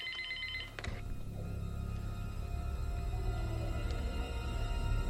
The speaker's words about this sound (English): So the phone rings, and we get this.